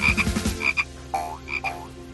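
A small green Kuranda tree frog, an endangered species, croaks by a rainforest track in a rapid series of short, bright chirping calls, pausing briefly between bursts, with no talking and only a faint low hum underneath.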